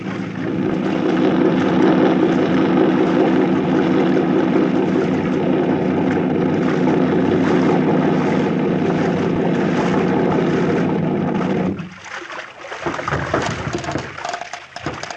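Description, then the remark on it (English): A motorboat engine drones loud at a steady pitch, then abruptly throttles down near the end, leaving a rougher, uneven idling rumble, as the boat arrives at the mainland by a forest and is run up alongside an old piling. “Run the boat up alongside that old piling and tie her up, Skip.”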